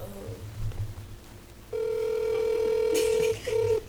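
A phone call goes out: after a quiet, muffled stretch, a loud steady electronic tone drones for over a second, then a brief second beep follows, clear with no talking.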